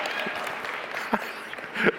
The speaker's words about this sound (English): Oh, I love, none of the men were clapping, but all the women were.